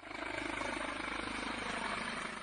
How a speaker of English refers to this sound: Firefighters used a helicopter to douse the landfill site with water as they struggled to get the blaze under control. Officials said at least 6 hectares of the rubbish dump caught fire.